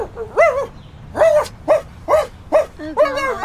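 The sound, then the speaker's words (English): A person imitates a dog, letting out about six loud woofs in quick, uneven succession, with nothing else going on in between. “Why did I just bark like a dog?”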